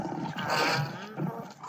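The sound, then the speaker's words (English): Lion cubs roar in a string of rough, high-pitched bursts that overlap for nearly two seconds, fairly loud, rising in strength near the end. “I'm here with my lion cubs.”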